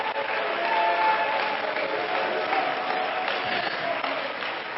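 An audience claps and shouts unto God together, a steady dense wash of applause mixed with raised voices and cheers, loud and sustained throughout.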